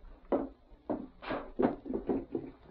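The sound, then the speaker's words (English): A wooden drawer is yanked open and shoved shut, with a quick series of rattling thumps and scrapes, no voices present. “The drawer.”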